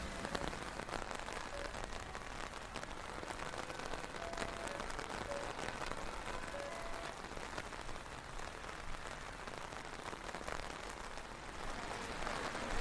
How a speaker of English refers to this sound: So we've made it across that crazy intersection, the rain's still tipping down. We're turning right by Wendy's just up alongside the freeway, and then we're going to take the second left.